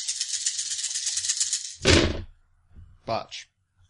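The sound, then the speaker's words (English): A handful of twelve dice rattles steadily for almost two seconds, then spills out in one loud clattering burst. A short voice follows after a pause. “This is 12 dice, people.”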